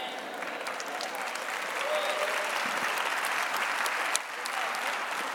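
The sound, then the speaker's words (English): A crowd applauds with steady, dense clapping that holds at a fairly even level throughout, filling the room with a continuous patter of many hands. “Y'all notice how the claps are getting less and less.”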